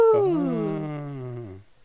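A baby boy on the other side of the house lets out one drawn-out wailing yell whose pitch slides steadily downward for about a second and a half before breaking off. There is no talking.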